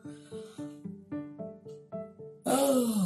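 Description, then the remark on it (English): A voiced yawn: a string of short humming tones swells into a loud, breathy exhale whose pitch slides downward at the end. “I don't know what's up with me yawning today.”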